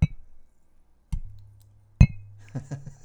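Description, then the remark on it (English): Glasses of a highly carbonated drink clink together in a toast, three bright chimes spaced about a second apart with short ringing tails, followed by faint soft clatter. “Oh, Cheers. Cheers.”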